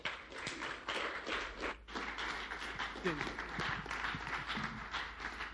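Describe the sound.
A church audience applauds a speaker after the sermon, a steady, dense patter of many hands clapping at once with a few scattered voices underneath, continuous and fairly loud for several seconds.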